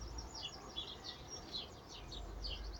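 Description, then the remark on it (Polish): Many small birds chirp and twitter continuously, their quick overlapping high-pitched calls layered over a low, steady outdoor rumble, with no voices present. “Ptaszki świergolą, a ja w wolnym ich tłumaczeniu jestem jakoby ich agentem, ajentem, tłumaczem.”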